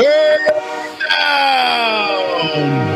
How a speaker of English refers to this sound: Are you familiar with what's about to happen? I don't know what's happening. The train horns are going, baby. Oh, apparently I have to turn it off.